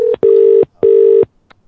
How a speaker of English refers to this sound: I like the part of the show when the phone rings.